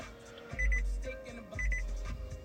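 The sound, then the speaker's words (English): A car's electronic alert chime sounds twice about a second apart, each a quick cluster of bright, high beeps over a low droning hum, fairly loud with no voices. “Oh, that's my car way of telling me it's time to wrap it up.”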